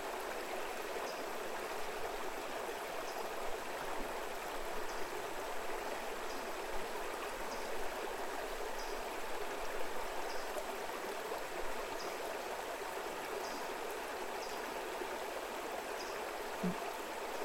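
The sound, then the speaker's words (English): Steady flowing stream water fills the whole recording with a dense, even rush and no talking, while faint, regular high ticks sit above it. “Not all this money is the water, too.”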